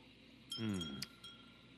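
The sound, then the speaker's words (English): Glasses of gin and tonic with lime and orange wedge clink together in a toast: a bright tap followed by a thin ringing tone that lingers briefly, preceded by a soft murmur-like sound. “Let's say cheers.”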